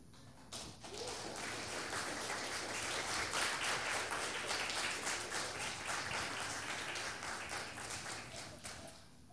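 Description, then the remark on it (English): A crowd at Cedar View, where the pastor marks eight years, claps steadily for several seconds, a dense, even patter of many hands that swells slightly in the middle and holds until the end, with no voices over it. “I don't want you to clap, but that actually helps me be a little less emotional.”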